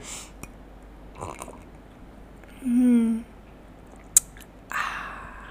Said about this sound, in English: Let's do a little bit more ASMR. Let me take a sip of my sunshine coffee.